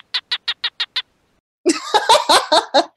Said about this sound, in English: and then the males will stick their little stubby heads out of their dens and bark, making these little chirping noises to seduce females and convince them to come to them to mate and lay her egg.